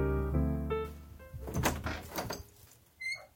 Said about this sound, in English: Let me go get the door. Oh boy.